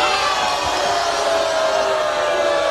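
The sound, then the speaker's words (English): A studio audience cheers and shouts loudly and continuously, a dense wall of overlapping voices and whoops filling the whole stretch without a break. “They're turning on me. It's a fickle crowd in the studio, guys.”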